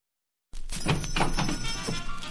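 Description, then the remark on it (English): A short chime signalling that it is time to listen to a story plays a few notes in quick succession, each with a bright ringing onset, over a steady hiss after a moment of silence. “You will know it is time to listen when you hear the chime like this.”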